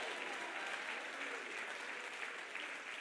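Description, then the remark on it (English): A large group claps hands in a dense, continuous burst of applause that fills the whole stretch, steady and fairly loud with no pauses, with a faint murmur of voices underneath. “Clap your hands and shout hallelujah, hallelujah, hallelujah.”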